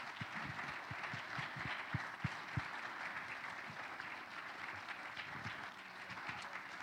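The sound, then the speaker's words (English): A church audience applauds steadily for several seconds as youth leaders come up, a dense wash of many hands clapping with a few sharper individual claps standing out, no voices over it. “So why don't we give these youth leaders a hand as they come on up first?”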